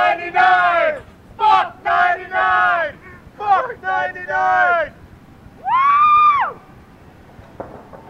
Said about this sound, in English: That yelling at the end of that is four of us out in the street in front of my apartment screaming at midnight on Y2K.